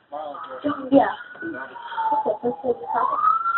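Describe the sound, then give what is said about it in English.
The siren of emergency responders coming to help children near a cemetery wails steadily behind someone talking on an emergency phone call, its pitch drifting down and then sweeping back up as it passes. “I hear the sirens.”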